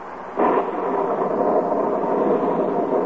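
Rain falling outside a cabin on the shore of Lake Wapahokee, near Wistful Vista in duck hunting country: a dense, steady hiss that begins abruptly after a brief quiet moment and holds at an even, fairly loud level with no voices.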